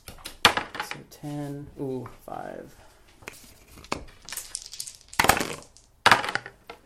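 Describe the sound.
Two six-sided dice with American and British flag designs are rolled across a tabletop, six rolls in all, in several short, sharp bursts of rattling clicks, fairly loud, with a voice briefly murmuring between the rolls.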